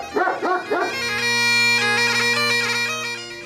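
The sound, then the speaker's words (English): A puppy lets out three quick, high-pitched yips, then holds a long, steady whining cry that lasts to the end. It sounds fairly loud, with no one talking. “You touch that dial, laddie, and I'll shoot this puppy.”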